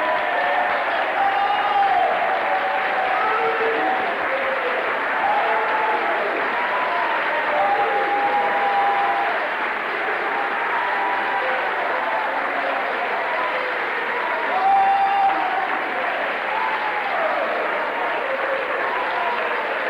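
An audience claps for Jesus steadily and loudly for a long stretch, a dense continuous wash of many hands with a few faint voices calling out underneath.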